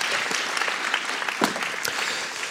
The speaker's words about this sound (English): Round of applause for my daughter. Read very well there, I thought.